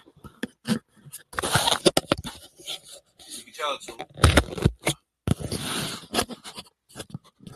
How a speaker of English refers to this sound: Just adjusting my mic again there, guys.